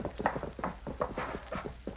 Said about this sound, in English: Yeah, the Indian's coming. He's coming in riding hard.